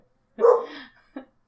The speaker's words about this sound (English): Did she hear me? Is she doing it? Ooh, she did stop barking. That was good.